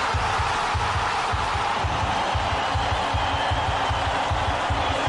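A large football stadium crowd roars continuously and loudly after Glory scores a goal, a dense wall of cheering and yelling amid flag waving, with steady rhythmic low thumps pulsing underneath, like stamping or drumming.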